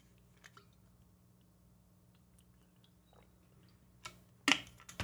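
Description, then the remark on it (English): Someone drinks water: a mostly quiet stretch, then a short cluster of wet sips and swallowing sounds near the end. “You want to drink some water?”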